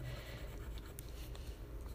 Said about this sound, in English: I didn't want to use my pencil and run out of lead, so we're gonna use a black colored pencil for shading in stuff.